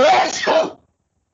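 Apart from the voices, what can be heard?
sneeze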